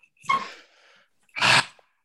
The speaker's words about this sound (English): Maybe, as you hear my dog barking in the background.